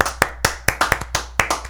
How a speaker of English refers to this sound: Let's give her a round of applause, guys.